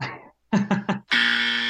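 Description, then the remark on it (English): A harsh electronic trade buzzer, used to signal a trade, sounds: one short burst, a brief pause, three quick pulses, then a long sustained loud blare. No voices are heard. “There is the trade buzzer to signal a trade here, and we're gonna use that going forward if it comes across well.”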